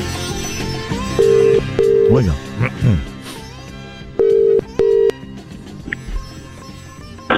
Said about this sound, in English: I just need to make a quick phone call. But hold the line, please.